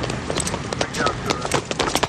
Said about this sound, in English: So those footsteps you hear, that's Tubbs running away, jumping onto Crockett's boat, his Stinger, which is a cigarette boat, and driving off into the sunset.